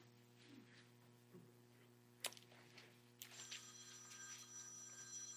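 A telephone rings during a church sermon, a steady high electronic trill starting partway through after a couple of sharp clicks, set against a constant low hum with no talking.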